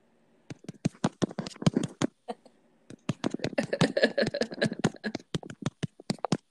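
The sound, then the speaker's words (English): Keys clattering on a computer keyboard heard over a speakerphone: quick, uneven bursts of sharp clicks with a brief pause midway, then a denser run of typing. No one speaks. “Eric, because you're on speakerphone, Eric can hear your keys going.”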